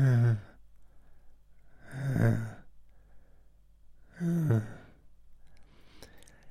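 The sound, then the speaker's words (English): A voice imitates snoring with three breathy, throaty snorts spaced about two seconds apart, each rising and fading, with quiet pauses between them and no talking. “I think he snores.”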